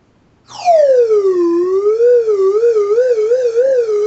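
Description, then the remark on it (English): A real metal slide whistle, not a soundboard effect, plays a loud, steady tone that swoops down in pitch, then wavers up and down in a quick wobbling vibrato, heard alone without any talking. “This is an actual, coming from not just a soundboard, but an actual slide whistle. It's made of metal and everything.”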